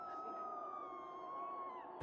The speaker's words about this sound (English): There's some kind of commotion happening on the other side of the park. Blaring sirens, more screams.